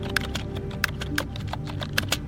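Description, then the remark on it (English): Clicky typing on a keyboard, a quick uneven run of sharp key strikes with a few louder taps standing out, close up over a steady low background hum. “He's got like a 2003 keyboard, and it's the most beautiful sound.”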